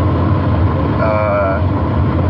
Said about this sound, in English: Just in the car, leaving. Been driving for like 10 minutes.